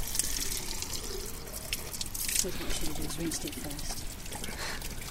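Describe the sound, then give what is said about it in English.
Spring water from the Chalice Well streams steadily into a bottle being filled, with a continuous splashing, gurgling pour lasting the whole clip, fairly loud, with faint murmuring voices underneath. “It seems sacrilege to catch the water and then pour it away, but it's flowing away.”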